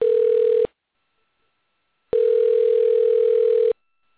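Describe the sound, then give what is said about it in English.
A phone ringback tone on an outgoing call: two steady electronic rings, a short one then a longer burst, separated by a pause of silence, clear with no one picking up. “No, they're not going to answer, so I'll cancel that out.”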